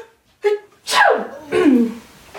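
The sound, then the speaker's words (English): A short inhaled build-up followed by two forceful sneezes in quick succession, loud, with a breathy burst and falling pitch on each. “Bless you.”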